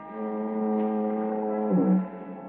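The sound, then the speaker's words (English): A foghorn down at the point near San Quentin Prison, in fog turning to drizzle, sounds one long, monotonous moan, a steady droning tone with a rich buzzy edge that holds for a couple of seconds before sagging slightly in pitch at the end. “It's cool, quiet, except for the monotonous moan of the foghorn down at the point near San Quentin Prison.”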